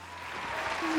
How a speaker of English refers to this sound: Well, thanks for all the fake canned applause that just, you know, got played there.